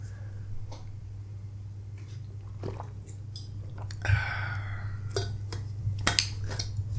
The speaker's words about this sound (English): Gonna drink some water.